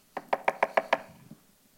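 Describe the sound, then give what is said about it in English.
Six quick, evenly spaced raps on a door, fairly loud, followed by a single faint, softer thud after a short pause. No voices are heard. “Go knock doors.”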